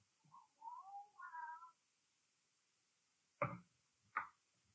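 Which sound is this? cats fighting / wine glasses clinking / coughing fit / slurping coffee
cats fighting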